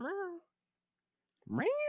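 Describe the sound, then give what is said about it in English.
A person mimics a cat fight with two short, whiny meows separated by a brief pause. The second one rises sharply in pitch and sounds louder and more strained. “Oh, it ain't Fight Club. Cat fight.”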